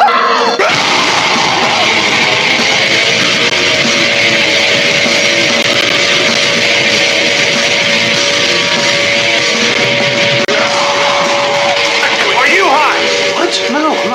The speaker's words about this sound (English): Boy, did you get a wrong number. Leave your message at the sound of the shriek.